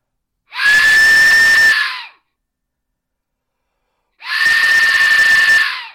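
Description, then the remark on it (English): Two loud, piercing scream-like blasts from a replica Aztec death whistle, tuned exactly as a real Aztec death whistle is tuned, each lasting about a second and a half with a harsh, noisy rasp around a steady shrill tone, separated by silence. “This is a replica of an Aztec death whistle tuned in the exact way a real Aztec death whistle is tuned.”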